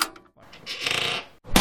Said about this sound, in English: Hold on, I'll get him back. 1 second. Trap door release.